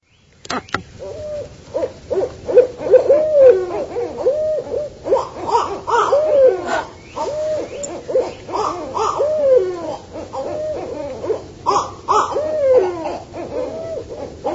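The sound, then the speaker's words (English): A barred owl hoots in a steady series of rising and falling calls, fairly loud, with a second, more excited voice joining in a raucous back-and-forth chorus. “What I need to do is splice in a clip of a barred owl here.”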